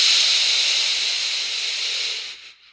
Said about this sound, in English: Push all the air out, all of it out. Flex and push.